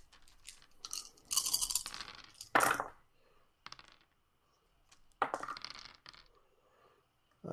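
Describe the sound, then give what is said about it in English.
Dice are rolled for a dexterity stealth roll, rattling and clattering across a hard surface in two bursts, a busy scatter of sharp clicking knocks, then a pause before a second shorter tumble of clacking dice. “Do you want to roll me another dexterity stealth?”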